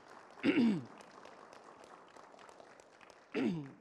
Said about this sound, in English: So could we thank them? Just a little quick round of applause.